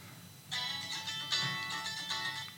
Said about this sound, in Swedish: Nu ringer radion kanske. Nej, nu ringer min man.